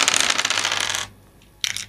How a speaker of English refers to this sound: So I'm going to roll 4 die. Oh, this better be good.